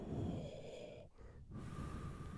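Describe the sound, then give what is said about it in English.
A voice imitates wind rustling through bushes as a Foley-style effect, with a steady, breathy whooshing hiss, briefly dipping twice before swelling again, fairly loud, with no speech. “The only sound was the wind rustling through the bushes.”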